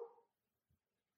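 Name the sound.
dog barking indoors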